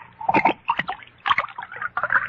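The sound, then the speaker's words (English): Another glass of wine is poured: the wine goes into the glass in a few gurgling splashes, the liquid sloshing and trickling in uneven bursts for a couple of seconds with no one speaking. “But before I do, pour me another glass of wine.”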